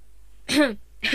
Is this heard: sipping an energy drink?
no